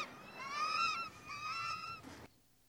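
Two loud, drawn-out honking calls from birds, like geese, each lasting about a second with a brief pause between, then an abrupt cutoff into near silence.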